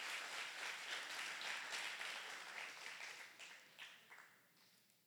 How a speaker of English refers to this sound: Den un aplauso a Jesús. Come on, give the Lord a great round of applause.